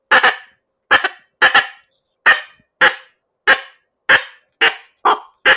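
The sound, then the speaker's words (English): A duck whistle imitating a blue-winged teal: about ten short, sharp, peeping notes at a steady, even rhythm, each fairly loud and clipped, with silence between and no voices. “A little bit higher pitch works better for the cinnamon, but the little lower is more for the blue-winged teal.”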